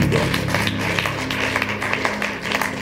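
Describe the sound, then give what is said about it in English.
A crowd claps hands together in a dense, steady patter of overlapping claps that holds at an even level for a few seconds, with a low hum underneath. “Clap your hands.”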